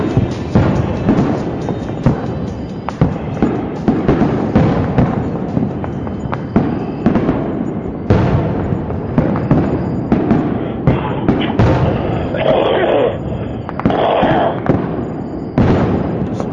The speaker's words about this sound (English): Sounds like warfare. It's fireworks. It's fireworks.